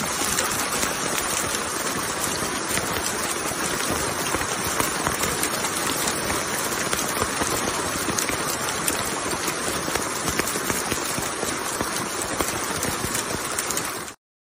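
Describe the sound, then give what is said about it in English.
Heavy rain and hail pound down at Shasta in a loud, dense, unbroken roar of countless tiny impacts, steady for the whole stretch with no voices, then cutting off abruptly. “Crazy hail, rained every day.”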